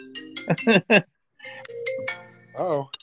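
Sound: phone ringtone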